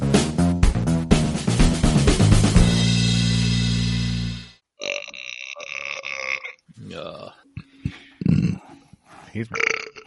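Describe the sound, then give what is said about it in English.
A long, loud, rumbling burp lasting several seconds, deep and raspy, trailing off before voices and laughter-like sounds follow. “Very gassy tonight.”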